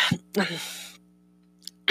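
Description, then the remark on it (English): A person yawns: a breathy, voiced exhale lasting about half a second, with a short sound just before it, then silence and a couple of brief breathy noises at the end. “Sorry, gotta yawn.”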